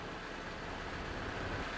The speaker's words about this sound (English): you hear this car barreling towards you.